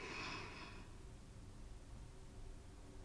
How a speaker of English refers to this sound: Let's do it again. Breathe in through your nose. go to the top.